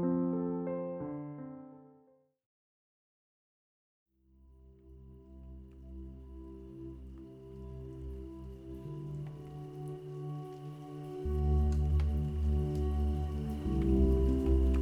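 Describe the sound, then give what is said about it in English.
Gentle raindrops patter steadily after a brief fading chime and a short silence, a soft continuous shower blended with a low, sustained hum underneath. “Tonight, let the rhythmic sounds of gentle raindrops lull you into deep, peaceful sleep.”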